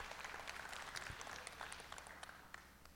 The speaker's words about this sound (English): So can we clap for them?